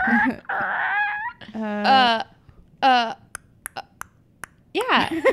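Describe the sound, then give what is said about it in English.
A voice mimics a car turn signal with a run of about six sharp, evenly spaced mouth clicks, tick-tick-tick, set between bursts of wailing, tonal vocal noises. “That is a turn signal.”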